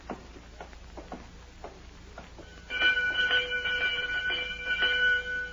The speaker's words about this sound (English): Sure I rings the bell. They don't hear me yet. He's outside. I go to the door and ring.